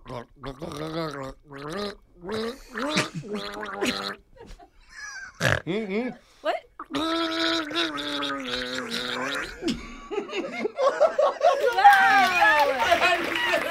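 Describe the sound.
A man gargles water while trying to carry a melody, his voice bubbling and warbling through a tune before breaking into harsher, choking gurgles near the end.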